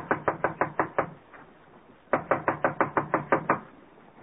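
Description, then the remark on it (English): Two bursts of rapid, loud knocking on an apartment door, about six sharp raps, a short pause, then eight or nine more raps in a quick steady rhythm, with no voices. “Get away from this door and cut out that noise.”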